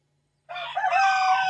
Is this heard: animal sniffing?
no